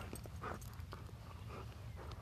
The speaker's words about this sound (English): Me putting a stick in the little puppy's mouth.